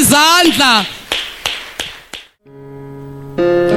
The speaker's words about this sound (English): Why don't you clap for the Lamb of God?